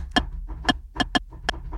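Five sharp, bright ticks of a clock at an uneven pace, with two close together near the end, over a low, steady rumble. No voices.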